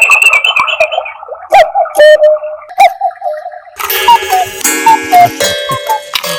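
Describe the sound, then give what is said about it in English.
A cuckoo clock ticks and sounds a few plucky tones, then bursts into a busy chime with repeated two-note cuckoo calls stepping downward over a bright, buzzing mechanical backdrop. “That's the cuckoo reference. I like that. It has a lot of pizzazz to it. Cuckoo, cuckoo.”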